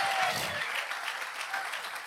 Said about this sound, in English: If you're going to clap, give God a good hand clap today.